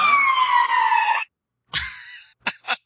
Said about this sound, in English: And I'm going to mute because here comes a ambulance.